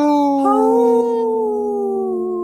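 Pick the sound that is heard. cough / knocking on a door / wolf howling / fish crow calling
wolf howling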